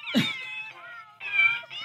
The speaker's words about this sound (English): Okay, now you're supposed to press here. Yeah, where it says press here. Right. Wait, we should like loop this and just do it the whole. Put it up to the microphone. Meow, meow, meow, meow. Ooh.